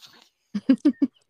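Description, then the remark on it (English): A male cat gives four short, clipped meows in quick succession, fairly loud, after a faint breathy noise at the start, with no one speaking. “Do you hear my cat?”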